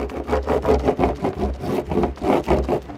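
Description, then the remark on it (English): A surfboard being waxed before surfing at a beach in Maine on the North Atlantic, with air about 30 degrees. Fast, repeated rubbing strokes make a rhythmic scrubbing friction sound pulsing several times a second, fairly loud, with a low rumble underneath and no voices. “So you were waxing up here.”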